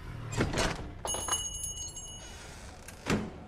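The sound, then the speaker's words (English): A front door is swung open by a man motioning people through: a muffled latch clunk and rattle, then a bright metallic ringing that sustains for about a second before fading, and a final soft thump. No one speaks. “Mr. Smith swings the front door open and motions us through.”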